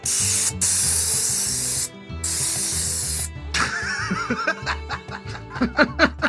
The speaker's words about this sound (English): What was that? Sorry, I had to dust off my keyboard. What just happened? You had to do that right then, huh? Right then, huh? My keyboard was dirty.